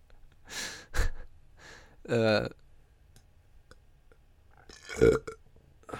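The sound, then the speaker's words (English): Several loud burps in a row, one long and croaky, with short clicking and breathy sounds between them and no talking. “I hope you guys just fucking love those burps.”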